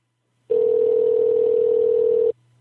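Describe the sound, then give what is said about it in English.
A Skype call's ringing tone: one loud, steady electronic beep held for almost two seconds, then cut off abruptly, with a faint low hum underneath and no voices. “calling on Skype because it's all zeros and 1, 2, 3, 4.”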